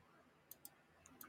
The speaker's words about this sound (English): Clicking all these buttons, but nothing seems to work.